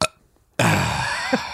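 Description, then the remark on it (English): A long, loud, rough burp brought on by nachos rumbles out after a short pause, lasting about a second and ending with a small upward gulp. “Nacho's gonna make me burp.”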